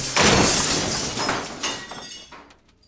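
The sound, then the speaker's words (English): A sudden loud crash as a dropped New Year's countdown ball hits the ground and shatters, followed by a couple of seconds of bright tinkling fragments scattering and settling, fading out near the end. No voices. “Oh, the ball broke. Oh my God, it's shattered everywhere.”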